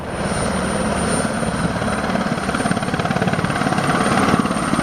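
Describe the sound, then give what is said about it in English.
A Bell 206 helicopter taking off for an aerial view of Vaux le Vicomte and its gardens. Its loud engine roar pulses with rapid, steady rotor chop that builds slightly in intensity, with no voices. “I took off for an aerial view of Vaux le Vicomte and its gardens in a helicopter in a Bell 206, the same model as Roger Moore and Corinne Clery, Sir Hugo Drax's pilot in Moonraker.”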